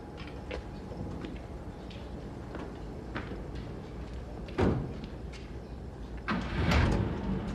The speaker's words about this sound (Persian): طوبا آرام لای در را باز میکند.